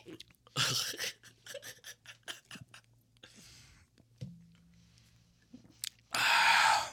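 Exaggerated gulping of beer: a series of wet swallowing and mouth noises in uneven bursts, with a loud breathy exhale or gasp at the end.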